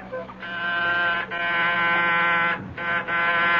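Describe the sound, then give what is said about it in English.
A doorbell buzzer at apartment 10B of 98 St. Regis, a luxury high-rise, sounds in several long, harsh, insistent bursts with brief gaps between them, a loud steady droning tone with no voices. “Who is ringing?”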